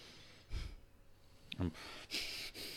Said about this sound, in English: I'm breathing real heavy because I'm so out of weight, overweight, out of shape, overweight. Don't judge me.